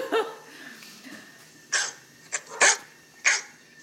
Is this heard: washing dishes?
no